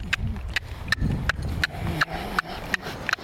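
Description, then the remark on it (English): A horse trots on a longe line, encouraged to move out, in a steady, even rhythm, its hooves landing in about ten crisp, evenly spaced strikes over a low, rumbling background. “Now we're going to encourage him to kind of move out a little bit, I think.”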